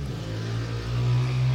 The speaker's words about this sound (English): Freaking stupid truck. What is that even? It sounds like a motorcycle.